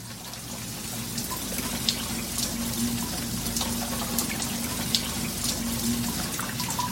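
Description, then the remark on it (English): Water runs steadily into a washing machine drum in a basement, a constant hissing rush with a low mechanical hum beneath it and a few faint splashes, with no one talking. “after a little bit, you start hearing the water going into the drum.”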